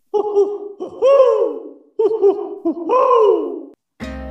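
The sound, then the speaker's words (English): An owl hoots loudly in two bursts of rapid, wavering calls that swoop up and slide down into drawn-out wails, ending with a brief thump. “Oh, there's that pesky owl.”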